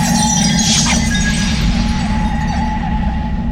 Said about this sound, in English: I am practically unaware as I reach into my coat and pull out a marble filled with an amber fluid. I quickly slam the marble upon the rocky grounds and it shatters.